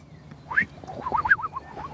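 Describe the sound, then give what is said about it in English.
A person whistles an imitation of a skylark's song, a quick run of rising and falling chirpy notes, moderately loud, after a brief quiet start. “And with the new bird that I can identify is a skylark. Yeah. Made a lovely... How did it go? It's cool. It's kind of a tweety, tweety songbird.”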